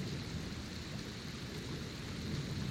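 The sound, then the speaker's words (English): A steady hiss of heavy rain pours down over a deep, continuous rumble of thunder, holding an even loudness throughout with no voices. “Maybe it can't hear with all the storm going on or something, but it doesn't seem to quite have the effect you're looking for.”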